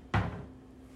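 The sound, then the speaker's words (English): A single sharp knock of a cupboard door closing as a shot glass is taken out, a sudden woody thud that rings briefly and fades into a low steady hum, with no talking. “This one, I'm not going to take it out of the glass, but I'm getting a shot glass right now, guys, so. Forgive me if it takes a second, but.”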